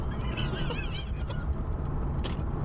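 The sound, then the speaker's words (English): Steady, loud low rumble of a car driving along a road very close to another car, with a few brief high chirping or honking tones early on, then continuous road noise. “You're, like, very close to this car.”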